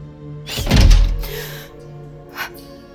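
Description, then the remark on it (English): A heavy mechanical thunk as the lock on a bedroom door bolts shut, followed by a softer secondary clack and a faint click a moment later, with no voices. “did you just lock my door?”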